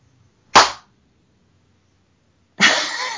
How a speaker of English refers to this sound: I'm going to try the clapping thing. Hold on.